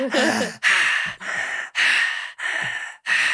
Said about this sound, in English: That's what celebrities do when they finish a song. Yeah. They deep breathe, heavy breathe. It was loud.